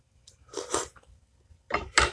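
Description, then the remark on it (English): Chewing on soft, crumbly Hostess coffee cake: two distinct bursts of mouth noise separated by a short pause, fairly quiet with no talking. “As I sip my Maxwell House International Vanilla Caramel Latte with my Hostess coffee cake and play a slot machine on my phone and do a podcast at the same damn time.”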